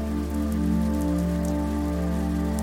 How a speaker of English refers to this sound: The wind is blowing a bit more, and light sprinkles of rain occasionally tap on the ground.